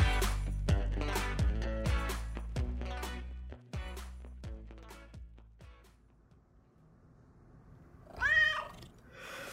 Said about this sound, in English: Oh, quiet, Joe. It's still sleeping time. No meow. Only sleep.